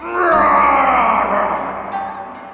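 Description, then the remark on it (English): A loud, gravelly growl from a dragon living atop a mountain swells in and holds for about two seconds, rough and throaty, then slowly tapers off. No one speaks. “The mountain was so high that the villagers never saw the dragon, though they often heard him growl and roar down the steep cliffs and across the craggy ridges.”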